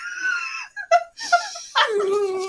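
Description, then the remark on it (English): A dog whimpers and whines, with a few short high-pitched whimpers followed by a long, drawn-out mournful whine, with no one talking. “Oh no, the dog's sad.”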